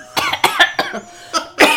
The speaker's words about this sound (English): The Macra coughs.